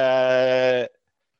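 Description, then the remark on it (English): A voice imitates a falcon's screech with one loud, steady, buzzing cry held for under a second before cutting off sharply into silence. “This time, the screech in the air of the falcon, and it comes swiping down at Rumpet's lion face.”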